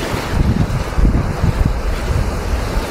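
Strong wind roars and whooshes continuously over churning sea surf, with gusty low-end rumble and buffeting throughout: a severe gale at sea around a ship carrying 100 head of cattle. No voices.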